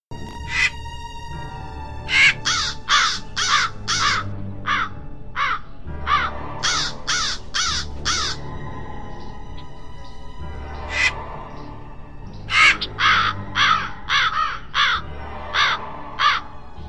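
A crow caws harshly in quick bursts of four or five calls, repeating several times over a low background rumble. The calls are loud, with no talking.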